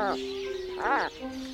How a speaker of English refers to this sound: Let's listen. This is an Atlantic puffin.